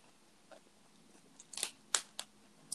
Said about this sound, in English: Girl, what did we say about the munching and the microphone? I'm sorry, I love carrots. I'm sorry.